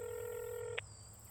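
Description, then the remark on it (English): A phone is dialed inside a car parked in a desolate area: a single steady keypad tone holds for most of a second, then cuts off with a faint click, leaving a low background hum. No one speaks. “Inside the vehicle, Rubian scrambles to make a phone call.”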